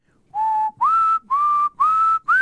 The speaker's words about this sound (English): That's Madame Butterfly, yeah, right? That's got to be whistling, okay. Good whistling.